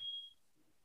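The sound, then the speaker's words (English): A single high-pitched electronic alarm beep sounds briefly and fairly faintly, then cuts off, leaving only quiet low background rumble. “We've got an alarm going off.”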